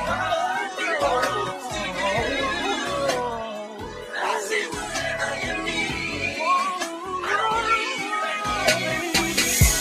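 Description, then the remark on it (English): A person does a cat impression, making a string of loud, drawn-out meows and yowls with sliding pitch, over about ten seconds and no clear speech. “I was, hey, if you'd have been like, "Nah, go ahead, do a solo," I was gonna do my cat impression.”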